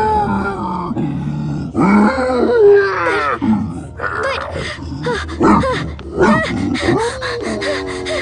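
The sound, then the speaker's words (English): A creature growls and snarls in a series of rough, throaty bursts mixed with gasps and grunts, loud, with no speech. “Don't growl like that!”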